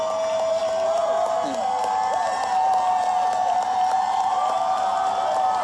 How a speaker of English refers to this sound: Look at them, they're still clapping like this.